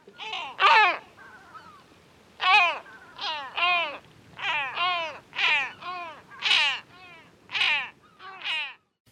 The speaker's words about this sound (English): And the great black-backed gull.